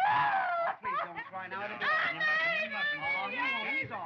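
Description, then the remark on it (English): A woman lets out a loud, high, wavering shriek of pretend fright that stretches on for several seconds, trembling and breaking into laugh-like wails. “I would like to be able to scream and faint whenever I just, like, am not feeling something anymore.”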